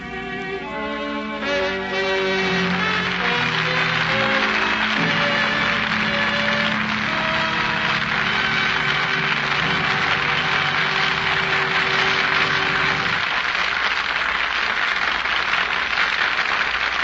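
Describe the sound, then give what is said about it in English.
A nonstop train passes right on time at 8:30, roaring past with a loud, steady rush and rattle, its whistle tones sliding downward near the start, the clatter continuing without pause and no voices over it. “There goes the nonstop right on time.”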